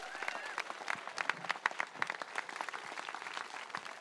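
An audience applauds steadily, many hands clapping in a dense, crackling wash with a few sharper claps standing out, holding at an even, moderate loudness throughout.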